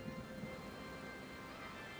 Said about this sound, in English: There's rain pouring through a hole in the roof.